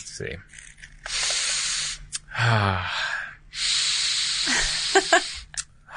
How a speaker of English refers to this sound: Okay, so I'm going to hand you a book. All right. And I want you to sniff the book and tell me what it smells like.